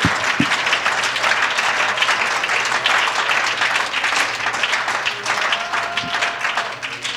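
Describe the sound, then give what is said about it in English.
An audience's sustained round of hand clapping in praise of the Lord, dense and steady at an even loudness throughout, with faint murmurs and a brief tonal hum under the applause. “Why don't we give the Lord a hand clap of praise today?”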